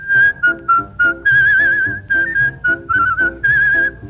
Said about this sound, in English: They've even been known to whistle while they work.